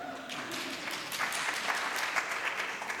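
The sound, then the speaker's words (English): An audience applauding, steady and dense, with many hands clapping together at a moderate level for about three seconds. No one speaks over it. “And you can ask the people applauding what that means, if you don't know.”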